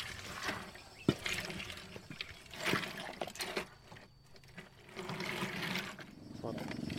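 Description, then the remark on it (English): Water from the Namu River rushes steadily through a narrow channel being cleared by ethnic Kamu women from a nearby village, a continuous gurgling flow with occasional sharper splashes and indistinct voices faintly in the background. “They are clearing a channel so that the water can go through from the river.”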